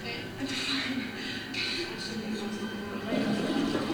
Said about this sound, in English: And she flushed it.